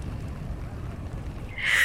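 An ancient Greek trireme, a long boat with three rows of oars along either side, moves through water in darkness: a steady, low rumbling wash, then a brighter surge of splashing as oars strike near the end. No voices.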